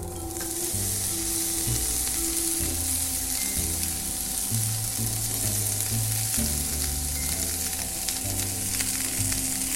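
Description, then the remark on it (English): About a pound of mushrooms, spread across a pan, fry in hot oil with a steady, dense sizzle and crackle throughout, broken by occasional scraping stirs. No one speaks. A low sustained hum sits beneath the sizzling. “And then I'm gonna spread all the mushrooms across the pan.”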